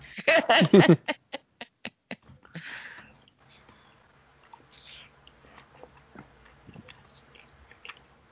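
A person eating: a loud burst of crunchy biting at the start, then a steady series of sharp, crisp chewing clicks that fade into softer, quieter mouth sounds and occasional smacks.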